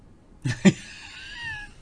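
A cat meows once, fairly loud, with a sharp double onset that stretches into a drawn-out, slightly falling cry before fading out. Nobody speaks.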